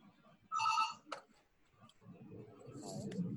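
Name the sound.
hotel room telephone ringing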